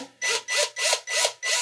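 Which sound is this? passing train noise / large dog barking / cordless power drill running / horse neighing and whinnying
cordless power drill running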